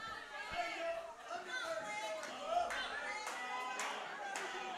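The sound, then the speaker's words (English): A wrestling crowd chants "Mama" in support of wrestler Flex Simmons, a dense roar of many voices rising and falling steadily, punctuated by scattered sharp claps and thumps throughout. “And the crowd is chanting mama.”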